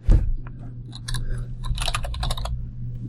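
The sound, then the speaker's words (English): Rapid, uneven clicking of computer keyboard keys being typed on at a dual-monitor setup, over a steady low hum, with no one speaking. “So I remembered to bring out my Raspberry Pi adapter today, so I have the dual monitor set up so I can keep typing and look at you looking at your computer screen at the same time.”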